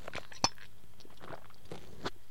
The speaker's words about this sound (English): My throat's getting a bit sore, so I won't go through. In fact, let me have a sip of fluid.